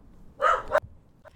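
A puppy lets out one loud, high-pitched bark, stretched into a brief yelping whine, then gives a much fainter short yip a moment later. No one speaks.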